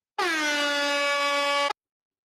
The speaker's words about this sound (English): Found my air horn. I'm sitting here struggling with this damn thing. I got this DJ app on here, man. I'm sitting here playing around with this thing.